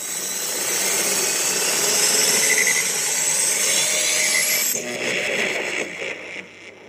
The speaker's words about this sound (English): So strap in and buckle up. Because the World Gone Good time machine is starting up and about to fire on all good cylinders.